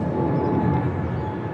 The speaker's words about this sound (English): Oh, no. And there's another plane.